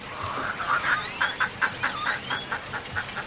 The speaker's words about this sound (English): This tiny island in Laguna Madre, Texas, is a protected rookery and home to more than 400 species of birds, including white ibis, black-crowned night herons, as well as great blue ones, reddish egrets, and roseate spoonbills.